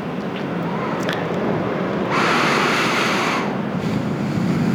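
Steady ocean surf rumbles as waves crash into the shore, with one wave swelling into a louder hissing crash midway before easing back into a constant wash of water.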